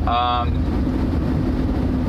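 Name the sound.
car interior road noise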